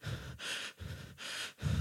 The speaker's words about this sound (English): Your body, especially your heart, does not like erratic, haphazard, incoherent breathing. When you are stressed and anxious, you tend to panic and you breathe rapidly.